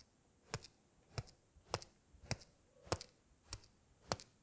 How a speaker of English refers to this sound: And we're going to start by crossing our hands, our wrists in front of our chest. And we're going to just knock our wrists together.